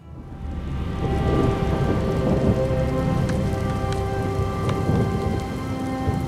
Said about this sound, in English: The storm is receding. The Reach is ours once again.